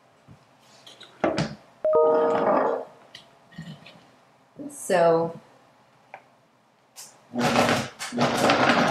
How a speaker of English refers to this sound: Doesn't look like much of a dip right now, does it? So let's let the blender do its magic.